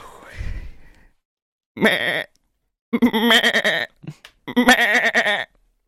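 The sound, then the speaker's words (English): A person imitates a sheep, giving three wavering, nasal bleats: a short one, then two longer quavering cries with brief pauses between, fairly loud after a soft breathy noise at the start. “That was a sheep, bro.”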